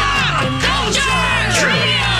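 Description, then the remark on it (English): A crowd screams and cheers loudly and continuously, many high voices overlapping in rising and falling shouts over a steady low rumble, with no pause for the whole couple of seconds. “Whatever comes to mind, shout it out.”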